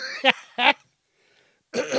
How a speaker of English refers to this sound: Or if I'm like, you know, not coughing but clearing my throat like that.